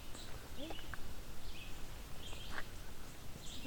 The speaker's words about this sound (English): But there was a bird up on the left here that was guaranteed pine warbler. There, that one.